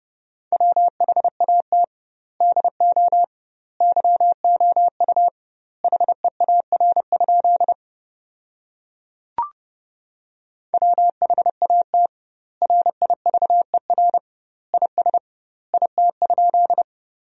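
Morse code sent at 30 wpm with doubled word spacing, sending sentences built from the 300 most common words: a steady mid-pitched beep keyed in quick dots and dashes, grouped into words with gaps between, broken midway by a pause and a single sharp click.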